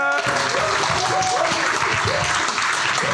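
A crowd applauds loudly and steadily, a dense wash of clapping with a few whoops and cheers rising over it throughout.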